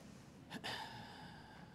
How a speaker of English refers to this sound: I don't know about you, but I'm tired. I didn't actually mean to yawn there. That was not intentional.